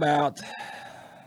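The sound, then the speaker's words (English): A short, loud rooster crow: one strained, harmonic call that breaks into a thinner, higher drawn-out tail, lasting just over a second with no talking. “Let's talk about some chickens.”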